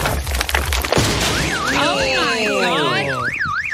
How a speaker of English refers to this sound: That looks like about a 4-foot by 8-foot piece of concrete. It just absolutely destroyed this man's car.